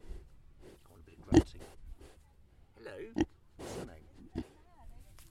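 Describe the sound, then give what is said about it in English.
Pigs kept outdoors all year round on a farm oink and grunt outdoors: a few short, gruff snorts come at irregular intervals, with softer snuffling and low murmurs between them. “So, Martin, these aren't cows. These are pigs. These are pigs, outdoor pigs”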